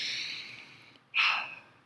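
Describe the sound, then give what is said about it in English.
A long, airy inhale followed after a brief pause by a louder, forceful exhale, one deep breath with no talking. “One of the things she said we could do to feel rested and to relieve stress is to do deep breathing.”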